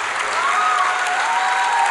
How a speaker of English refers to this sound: Bless you. And there's a reason y'all are all clapping. Why? Because it's more blessed to give than it is to receive, right?